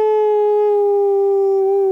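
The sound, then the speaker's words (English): A person lets out a loud, sustained dog-like howl, holding one steady pitch for about two seconds, with nothing else audible. “Woof, woof, woof! Ow!”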